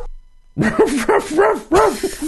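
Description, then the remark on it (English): After a moment of quiet, a dog in the background barks about four times in quick succession. Each bark is short, high and a little whiny, with a steady rhythm and no other voices. “Do you hear that dog in the background?”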